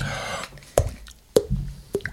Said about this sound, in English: There it goes. It's like a water drop.